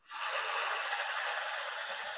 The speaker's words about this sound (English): I want to just show you what the breath is going to be like. So you're going to be breathing in like you're sipping through a straw.